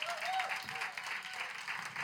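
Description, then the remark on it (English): An audience claps steadily, a dense wash of many hands applauding at once, with a faint high whistle-like tone rising briefly early on. The applause is for Jesus Christ of Nazareth, given after a prayer. “I said clap for Jesus.”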